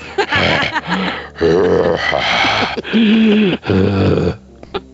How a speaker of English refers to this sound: You're breathing real heavily there